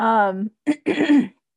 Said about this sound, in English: So anyway, gosh, if I could quit coughing.